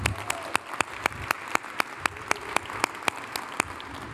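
An audience applauds steadily for about four seconds, a dense wash of clapping with one sharp clap standing out in an even rhythm, roughly four per second. No one speaks.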